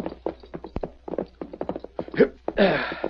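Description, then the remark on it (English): Horse hooves clip-clop at a steady walking pace as a horse is ridden toward a stage station, a run of crisp, evenly spaced knocks, followed at the end by a louder, breathy rush of noise. “Come on, Silver, old fellow. You'll stop at the stage station just ahead and you can drink.”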